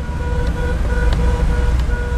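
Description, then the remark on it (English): Car horns honk at a bad driver in Cairo traffic, heard during a car ride, in short, overlapping blasts over a heavy, constant rumble of traffic and engines, the steady nasal tones breaking off and returning several times. “And I quickly learned that many of the honks are for bad drivers, like this one.”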